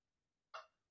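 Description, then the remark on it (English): A single small, quiet burp bursts out suddenly after silence and fades within a fraction of a second, with no talking around it. “That's like, see, I don't burp big.”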